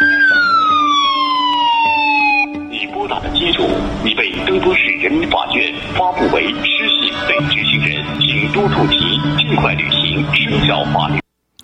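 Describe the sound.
A loud, siren-like phone alert in China for an incoming call from an undesirable caller with a lower social credit score: a high wailing tone sweeps downward for a couple of seconds, then gives way to a dense, continuous jumble of electronic tones and voice-like sounds until it abruptly stops.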